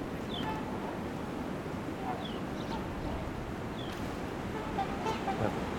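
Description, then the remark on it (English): A male house sparrow gives a few short, scattered chirps, calling and sort of singing, heard over a steady rush of wind and outdoor background noise. “All our bird call there is house sparrow.”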